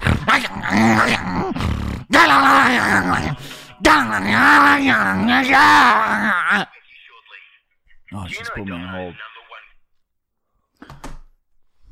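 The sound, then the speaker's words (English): A person imitates a dog with loud, drawn-out growls and howls of wavering pitch in three long bursts, followed by quieter strained yelps and one short final cry. “Wow, dude, you are a dog.”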